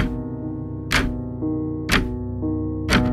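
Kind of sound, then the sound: household object, clock ticking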